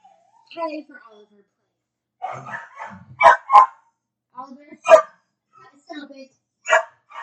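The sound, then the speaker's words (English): A dog lets out several sharp barks, a quick pair followed by two more spaced a second or so apart, with softer whining or muffled voice-like sounds between them. “We've had dog issues.”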